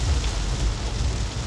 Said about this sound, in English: My umbrella is in the trunk. I didn't put my computer in the trunk because I said, hey, I'm just gonna drive home, and if I stop, I'm not getting out of the car. But let's hope the rain stops.